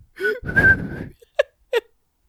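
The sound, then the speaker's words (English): A breathy, airy attempt at whistling: a long hissing blow with a faint wavering tone, then two short, sharp chirps of pitch. The sounds are fairly loud, with no talking. “I'm just whistling.”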